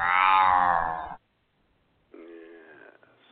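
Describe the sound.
A voice imitating a cat's meow: two drawn-out, throaty cries, a loud one followed by a brief pause and then a softer, strained one.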